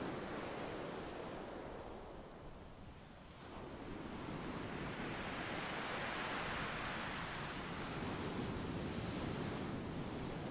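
Steady ocean surf washes continuously onto a shore, a broad roaring hiss that dips briefly then swells back as waves break and roll in, with no voices present.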